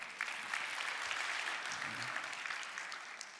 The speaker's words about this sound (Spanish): Date un aplauso.